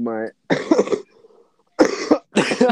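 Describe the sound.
Three harsh, loud coughs from a man burst out into the mic, the last two coming in quick succession after a short pause, preceded by a brief voiced sound.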